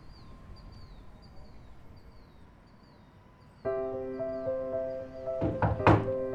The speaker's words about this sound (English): There is someone at the door. Yes, Rexa, I know what a doorbell means.